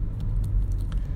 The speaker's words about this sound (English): You're currently driving home, Miami traffic. I wouldn't say it's bumper to bumper, but it's pretty close. And the end of summer is near, so this traffic is about to get worse.